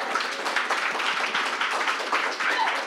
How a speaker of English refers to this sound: One more round of applause before we get started.